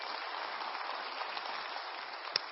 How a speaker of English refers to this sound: How about another round of applause for Justin and Mackenzie, huh?